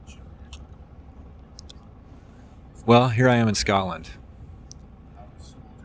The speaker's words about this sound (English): So last time I checked in, we were at an airport, I think. I'm on a bus now. When you travel, you have to take planes, trains, and automobiles. Or buses, I guess.